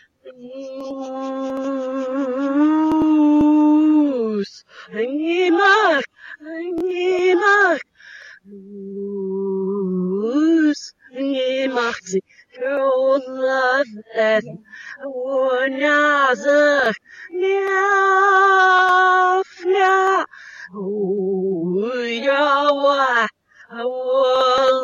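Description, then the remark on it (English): A lone singing voice played backwards: loud, sustained wavering notes that swell up and then cut off abruptly, with short gaps between phrases, giving an eerie, hooting quality throughout. “I can't sing, and my voice is really shot from Oakland Pride, so I'm really glad this is going to be backwards, because it's probably going to sound shitty.”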